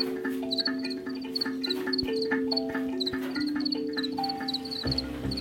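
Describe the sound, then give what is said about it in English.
Crickets chirp in quick, steady rhythmic pulses, high and fairly clear, over a layer of low sustained droning tones. No one speaks. “Everyone has some sort of positive association with the sound of cricket singing.”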